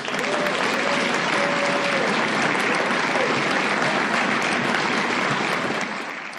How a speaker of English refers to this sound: Thank you. Let's give another round of applause for